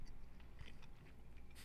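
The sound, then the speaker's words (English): Someone chews a keto-friendly snack bar into a microphone, with soft, irregular crunching and moist mouth sounds over a low background hum; it stays fairly quiet and no one speaks. “I'm trying not to chew in the microphone.”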